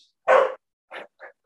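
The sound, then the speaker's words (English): A dog lets out one loud bark, followed by a few shorter, softer whiny yelps spaced out after it, with no one talking. “This is a dog sponsored episode.”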